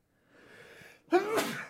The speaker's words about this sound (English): I feel like I have to sneeze.